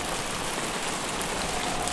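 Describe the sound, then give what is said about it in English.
Steady rain falls on an island in a dense, continuous hiss with no breaks, moderately loud, with no voices present. “I can't see very far into the distance because it's pretty dense with humidity and rain,”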